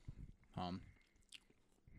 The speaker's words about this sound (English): Sorry for the chewing, guys.